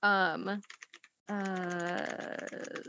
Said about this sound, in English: I'm going to make keyboard typing noises and you're going to have to edit this out